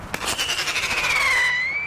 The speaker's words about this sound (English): Screaming rockets shot off from a cap gun zigzag into the night air.